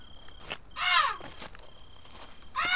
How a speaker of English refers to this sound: Immediately, the calling of the crows began in the treetops.